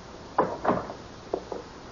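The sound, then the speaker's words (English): A door is pushed closed: a couple of soft, muffled thuds followed by two lighter knocks as it settles shut, quiet and with no voices. “Close the door a bit”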